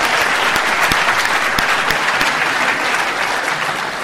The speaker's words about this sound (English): There we are. Round of applause.